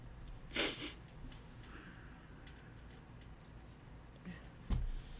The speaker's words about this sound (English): I'm sorry, I'm about to sneeze. That's not good. One second.